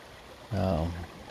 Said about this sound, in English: The water you hear is the Elk Neck River. I'm sitting on a rock that kind of looks like a chair.